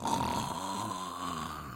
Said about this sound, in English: Suddenly, they heard the roar of the lion.